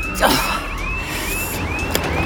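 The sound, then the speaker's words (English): A getaway car approaching amid steady road rumble, with a rapid, repeating high warbling tone sweeping over it throughout, fairly loud, with no talking. “Your getaway car? Could I grab a lift?”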